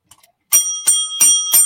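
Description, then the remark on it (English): A bicycle-style bell rings four times in quick, even succession, each strike bright and metallic with a sustained shimmer, loud, preceded by a couple of faint clicks. “We got a bell.”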